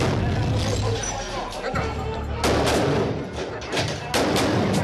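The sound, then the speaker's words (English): Bursts of gunfire crack out in a shootout as Marines force their way into El Chapo's safe house, captured on helmet cam video: several loud sharp shots in irregular succession over a low rumbling background, with muffled voices mixed in. “A shootout ensues, but Chapo is gone.”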